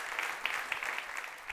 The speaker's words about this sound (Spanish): Dele un aplauso a Él.